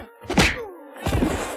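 Two punchy whacks land about half a second apart, each a loud, close thwack with a sharp attack and a brief ringing tail, like exaggerated fight-scene punch effects.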